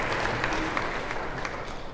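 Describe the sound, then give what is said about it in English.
Steady hand clapping, a quick run of sharp claps that carries on for a couple of seconds at a moderate level with no talking over it. “So I'm clapping for you guys for waking up today.”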